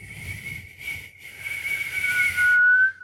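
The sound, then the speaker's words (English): A person tries to whistle into a microphone, producing mostly breathy, airy hissing that swells louder and only briefly catches a thin, wavering tone near the end before cutting off. “We're whistling into a microphone.”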